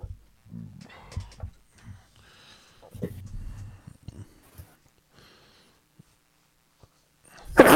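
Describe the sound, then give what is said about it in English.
A person lets out one loud sneeze right at the end, following several seconds of quiet murmuring and breathy vocal noises with short pauses between them. “Bless you.”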